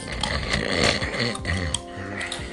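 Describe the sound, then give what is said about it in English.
A man chews Little Caesars pizza loudly: wet, smacking mouth noises with snorting, grunting undertones, continuous for a few seconds with no talking. “Listen to the soothing sounds of me chewing.”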